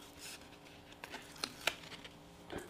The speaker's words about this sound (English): I'm just gonna peel one of these stickers off. They peel off pretty easily.